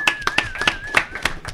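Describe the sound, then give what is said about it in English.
Sharp hand claps sound in a quick, fairly even series, around eight crisp hits, with a thin steady tone humming faintly underneath throughout. “Two times claps.”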